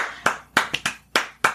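A single person claps six times in a slightly uneven rhythm, each sharp, bright clap ringing briefly before the next; no voices are heard.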